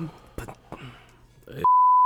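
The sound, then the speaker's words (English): A voice talks briefly, then a loud, steady, single-pitched censor bleep cuts in and holds unbroken for the last half second. “It's definitely more bleeps than bells.”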